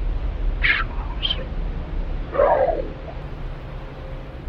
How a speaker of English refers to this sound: Hello? I said, nervously. In a low, almost growling, scratching voice, someone or something replied.